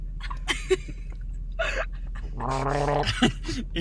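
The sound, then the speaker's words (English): A woman sputters and coughs after sipping a drink, with a few sharp bursts followed by a longer, strained, gurgling hack, as if choking on it. “Damn, she's coughing.”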